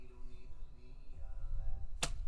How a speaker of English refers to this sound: So, I shot off three arrows. I do see what it means by how it takes a lot of muscles to do it.